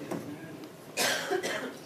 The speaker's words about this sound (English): I apologize in advance for coughing. I'll probably do it the whole time. I've had this for a long time, but I feel great, so that's all that matters, right?